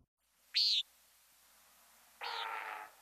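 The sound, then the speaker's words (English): A nighthawk gives one short, buzzy nasal call, then after a pause a booming, rushing whoosh of wings, made by a male at the bottom of its courtship dive, swells and fades. Both sounds are fairly loud and alone, with no voices. “Hear the call and the very unusual sound of the wings.”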